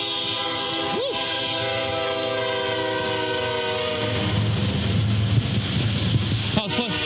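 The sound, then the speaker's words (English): A train horn blares in a long, steady chord, sounded to get a person off the tracks, joined by the rumble and rattle of rail cars rolling past as the horn fades into the clatter. “Hey, here comes the train.”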